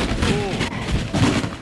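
A sound effect of a body tumbling down stairs: a dense, loud run of muffled thuds and bumps, with a brief wavering tone near the start.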